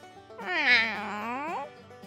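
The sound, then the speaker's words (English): A single drawn-out cat meow, rising in pitch then sliding down over about a second, heard alone with no talking around it. “He hadn't gotten very far before he met a cat.”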